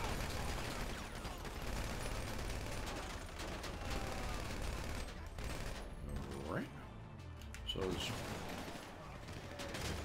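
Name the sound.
video game gunfire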